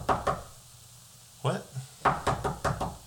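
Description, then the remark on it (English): Sharp knocks on a wooden door late at night: two quick raps, a pause, a couple more, then a faster burst of five or six firm knocks. “Fuck's knocking on my door this time of the night?”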